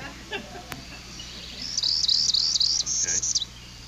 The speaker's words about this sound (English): Second suspect is a northern parula.